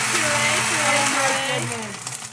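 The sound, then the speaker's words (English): A loud, steady blender whirs continuously as it blends and purees a drink, its dense grinding roar filling the whole clip while a voice talks faintly underneath. “Blend a drink. Oh, wow. Very loud.”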